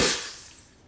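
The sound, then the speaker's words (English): A gem set in a vault door shatters as a sword is plunged into the door: a single loud, sharp crash like shattering glass, with a bright splintering burst that quickly fades into a short tinkling decay. No voices. “And the second gem shatters.”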